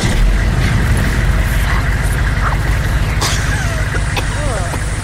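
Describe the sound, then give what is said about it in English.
The engine of an old pickup truck rumbles steadily and loudly throughout, with a few faint squeaky or vocal sounds riding over the low drone. “We have to use an old pickup truck.”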